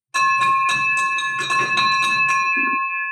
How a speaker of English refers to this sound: Here you have been listening to the podcast, listening to the bell, and now this was like the surreal moment where the bell has been rung for you, my friend,